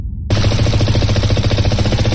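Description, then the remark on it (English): Automatic rifle gunfire erupts abruptly after a split second of silence, a loud, continuous stream of rapid shots rattling on for about two seconds without pause, fired at a charred book. “Automatic gunfire ripped into the charred cover of sanguine libations.”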